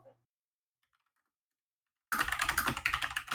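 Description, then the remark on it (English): Rapid typing on a computer keyboard: a dense burst of clattering keystrokes starts abruptly after a couple of seconds of near silence and continues steadily to the end. “Sorry for my typing.”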